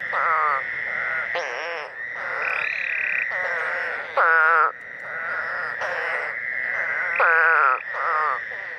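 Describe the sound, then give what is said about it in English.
A dense chorus of North American spadefoot toads, their nasal, bleating calls overlapping continuously, with several louder calls rising out of the steady background throughout. “Their eyes are more like the eye of a cat with a vertical pupil rather than the horizontal pupil you will see on all the other frogs and toad species.”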